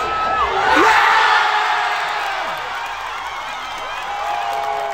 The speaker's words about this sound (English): Locally, more than 770 Canberrans turned out to watch the Matildas game live on the big screen in Groomer Place last night. The local crowd erupting when the second goal hit the back of the net.